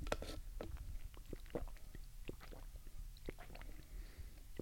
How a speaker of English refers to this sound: I went with my usual Starbucks, the vanilla, what is it called? I don't know, the vanilla latte or something to that extent. Anyway, it's what I get every single time. We'll take a sip of that.